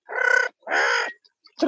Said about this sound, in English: What kind of noise is that for a bird?